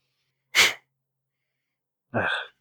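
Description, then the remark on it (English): A person imitates a sneeze: a sharp, breathy burst, a pause of over a second, then a louder voiced burst, with no other sound around it. “And then duck out as they sneeze.”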